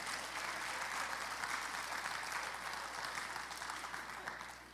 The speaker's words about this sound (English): The dude works hard. Y'all should clap.